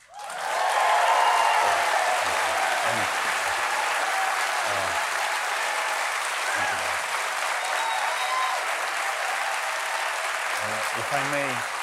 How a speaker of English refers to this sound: If I may, I just wanted to say that thank you for this round of applause. This is your applause, it's not to me, but to the people of Ukraine and our brave soldiers.